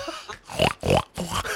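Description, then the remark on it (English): A person imitates a pig, giving three quick, nasal oinks in a row, fairly loud, with short gaps between them and no other sounds around. “Oink oink.”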